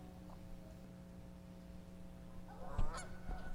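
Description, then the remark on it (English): A Canada goose gives a couple of loud, nasal honks near the end, following a steady low hum and background noise, with no one speaking. “A goose. A Canada goose.”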